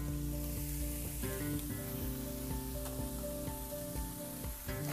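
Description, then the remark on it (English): Food sizzles steadily in a hot pan, a continuous crackling hiss that stays fairly loud throughout, with occasional sharper pops and no one talking. “And that cook and sizzle a little bit.”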